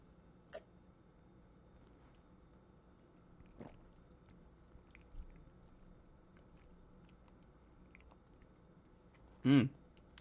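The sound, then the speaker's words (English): Quiet mouth sounds from someone sipping beer: a few soft clicks and small gulps, then one louder slurp near the end, with no talking. “Let's just take a sip and see what happens.”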